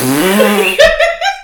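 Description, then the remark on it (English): A voice makes a mouth fart noise: a loud, buzzy, drawn-out blurt that breaks into a few short, higher-pitched sputters, with no talking. “And I like that that's the noise you made.”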